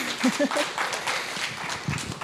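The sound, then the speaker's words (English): A short burst of audience applause, a dense patter of many hands clapping at a steady, moderately loud level, with a faint voice briefly underneath at the start. “Go ahead, clap.”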